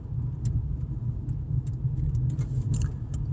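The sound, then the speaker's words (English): Steady, loud low rumble of road noise from inside a moving car on a day with a little rain, with faint jingling and light rattles popping up intermittently over the constant drone. “every day I'm finding interesting, weird things when I'm driving.”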